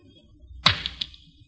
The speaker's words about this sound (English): Let me take the back off the watch for you.